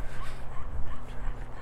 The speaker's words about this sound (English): Yeah, I'm just about to pass a pug. And look how loud it's breathing. Hiya. That does not sound like a healthy dog. It's like, that's not some good noises from an animal.